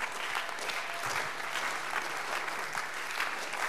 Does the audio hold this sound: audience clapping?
yes